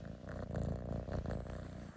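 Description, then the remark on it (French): A small kitten purrs steadily right beside the speaker, a low continuous rumble with a soft, rhythmic pulsing texture, quiet but clear and uninterrupted by any voices. “Si vous l'entendez ronronner, il est juste à côté de moi.”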